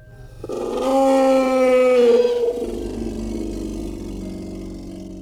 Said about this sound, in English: The howling seemed far away at first, but slowly seemed to get closer. The closer it got, the more it changed. It was hard to describe. It was like an angry bear, but it had a demonic quality that made their blood run cold.